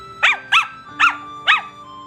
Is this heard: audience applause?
no